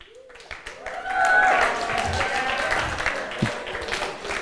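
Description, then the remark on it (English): An audience, asked to applaud and stand up from their seats if they go to public school, breaks into steady applause that swells after the first second and holds, dense clapping mixed with a murmur of voices and a few whoops. “So I'm kind of curious here, how many people, and I want you to show it with maybe an applause and by standing up from your seat, how many people go to public school?”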